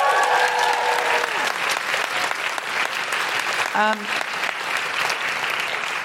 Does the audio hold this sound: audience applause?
yes